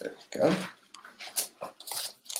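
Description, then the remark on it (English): Paper being torn off a pad: a loud rip early on, then several shorter crinkling tears and scrapes in quick, uneven succession. “Do I not have any paper left?”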